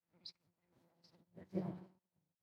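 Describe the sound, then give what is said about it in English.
A low, droning buzz of a swarm of bees coming from inside a bedroom wardrobe, fluttering unevenly before swelling louder for a moment near the end, then fading away. Fairly faint overall, with no talking. “Jean heard a buzzing sound emanating from the wardrobe inside her bedroom. When she opened the door, a swarm of bees flooded out”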